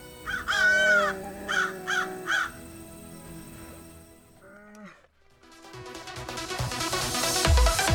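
Four harsh, raspy crow caws ring out loud in quick succession, followed by a brief pause and then music swelling in.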